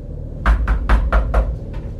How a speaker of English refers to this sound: When they knocked a second time, we noticed they were knocking from inside that bedroom in front of the stairs, the one with a piece of furniture blocking the door, the one no one had entered in a long time.